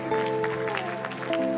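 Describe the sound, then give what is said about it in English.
An audience gives the word of God a hand clap in a dense, irregular patter while sustained organ or keyboard chords ring steadily underneath, both fairly loud throughout. “Let's give the word of God a hand clap. Come on. Give the word a hand clap.”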